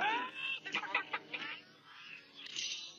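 A chicken clucks close by, a drawn-out squawk followed by a quick run of short, sharp clucks, then trailing off into softer, scratchy calls. No one speaks.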